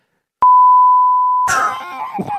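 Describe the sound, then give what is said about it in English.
A single loud, steady censorship bleep at a pure, mid-high pitch holds for about a second, then cuts off abruptly as voices come in right after. “That might have been beeped out.”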